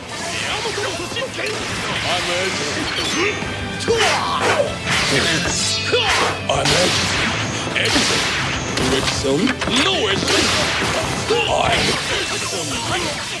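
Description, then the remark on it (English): A dense, nonstop barrage of explosions and gunshots from a Japanese children's superhero show, sharp cracks and heavy blasts overlapping throughout, with a muffled voice faintly saying "I'm Edison" beneath the din as a character shoots someone. “It's kind of muffled because of all the explosions and gunshots, but...”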